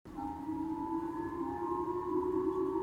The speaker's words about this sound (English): Missile sirens gave a jolt to residents in Japan's northern island of Hokkaido Thursday morning. People were told to seek immediate shelter after North Korea fired what appeared to be a new model of ballistic missile.